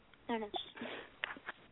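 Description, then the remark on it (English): Someone clears their throat in a few short, rough bursts with a quick sniff mixed in. No words are spoken. “I'm clearing my throat.”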